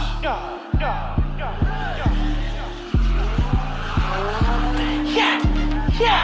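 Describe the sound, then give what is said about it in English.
A car engine revs hard in repeated loud bursts, roughly one every half second, while tires squeal and skid. Faint voices shout in the background. “When you come through in your car, man.”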